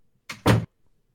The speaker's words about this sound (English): Okay, I'm opening the door. All right.